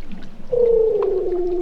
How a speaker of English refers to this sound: I think they're Weddell seals. There were a lot of different seals down there. But I believe that's, the song and communication of a Weddell seal.